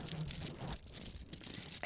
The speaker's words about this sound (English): Oh, that's the aluminum foil.